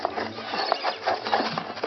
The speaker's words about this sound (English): That's the way the enemy's army landed. There was no thundering salvo of offshore cannon, no blazing muskets, nor flying lead. Only the deathly scurrying sound of thousands of dirty claws and disease-infested bodies.